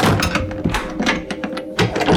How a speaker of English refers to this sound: the door to the laboratory slammed shut, and McKellen heard the tumblers in the locks tighten shut